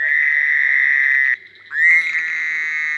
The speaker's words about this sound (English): In June, expect to hear in Brown County, bullfrogs would probably be most conspicuous. And then there are green frogs, as well as Cope's gray tree frogs, cricket frogs. They sound like little castanets, little clicking noises, and Fowler's toads.